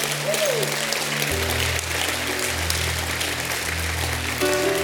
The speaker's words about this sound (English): Give God a hand clap.